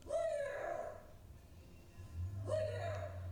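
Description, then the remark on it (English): A dog yelps and whimpers twice after being kicked by a woman, with high drawn-out whining cries separated by a short pause, and a low steady hum rising in the background. “Damn, she kicked the shit out of that dog.”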